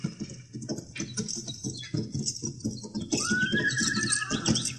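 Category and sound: animal, horse neighing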